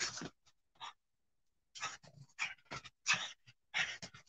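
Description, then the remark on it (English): A dog pants in quick, breathy bursts, with short pauses between clusters of huffing breaths and a faint whine mixed in; no one speaks. It is the middle of the night. “Oh, he's making a noise. He just made a noise.”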